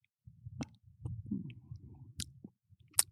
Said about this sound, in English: You're still chewing. It's just really chewy.